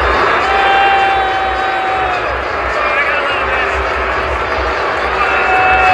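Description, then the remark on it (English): A large stadium crowd at the Dome in Central New York boos Pete Davidson of Saturday Night Live loudly and steadily for the full six seconds, a dense, sustained roar of many voices with a few higher tones and whistles threaded through it. “that is a man who just got booed by the folks here at the Dome”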